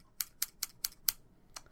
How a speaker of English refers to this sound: I'm just snipping my victory scissors. It sounds a little bit like you're just trimming your pubes on air. The sweet victory scissors.